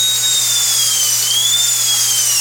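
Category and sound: tool, power drill whirring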